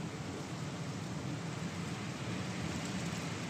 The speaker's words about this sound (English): What you hear is the wind through the trees. Wind that is picking up strength as a storm front rolls in. It's going to bring several hours of soaking spring rain.